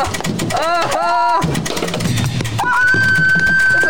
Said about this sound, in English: That's a horror scream if I've ever heard one. That sounds horrible.